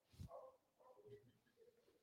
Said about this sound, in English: It's like they keep a dog in the back room or something.